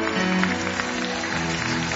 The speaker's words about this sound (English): Come on, give God a hand clap offering.